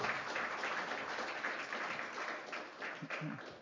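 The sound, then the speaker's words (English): A church audience at Hope Church breaks into sustained, steady applause welcoming the pastor to the pulpit in a morning service, many hands clapping in a dense wash that stays loud throughout, with a few faint voices rising underneath near the end. “We could actually give him a good, warm Hope Church welcome.”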